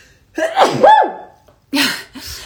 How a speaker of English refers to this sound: I'm gonna sneeze.